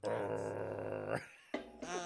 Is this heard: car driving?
no